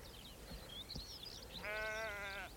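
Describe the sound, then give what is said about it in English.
A single sheep bleats loudly, a wavering, harmonic baa lasting about a second, preceded by faint bird chirps and soft outdoor rustling, among scattered sheep in open, treeless country above the tree line. “Scattered sheep around here.”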